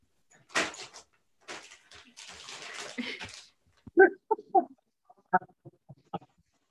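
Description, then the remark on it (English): Three dogs make noise: a few seconds of scuffling, scratchy rustling, then a string of short, sharp yelps and whines in an uneven rhythm. No one speaks. “I love your dogs. Oh my God. Three dogs, a nightmare.”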